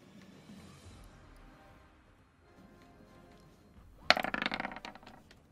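Dice rolled for damage clatter onto a hard tabletop with a sharp initial hit, followed by quick rattling bounces that settle within a second. They are fairly loud after a quiet stretch of faint room noise.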